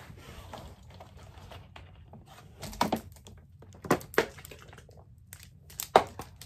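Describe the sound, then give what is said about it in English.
Someone handling a cup or bottle to get a drink of water: soft shuffling and rustling with a few sharp knocks and clinks spread across the moment, and no talking. “Let me get some water real quick.”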